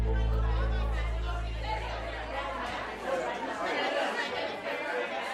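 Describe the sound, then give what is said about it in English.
A steady murmur of many overlapping voices, the indistinct chatter of a few dozen mostly young people talking at once inside a small gallery called You Belong Here in San Diego on a Saturday night, at a border art exhibition of photography and video, with a low hum underneath at the start. “In San Diego on a recent Saturday night, a few dozen people crowd inside a small gallery called You Belong Here.”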